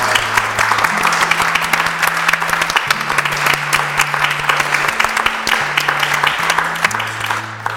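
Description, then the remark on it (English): An audience applauds its guests, clapping steadily for several seconds, a dense, loud patter of many hands that stays even throughout, with low sustained bass notes shifting in pitch underneath. “If we could all give a round of applause to our guests, please.”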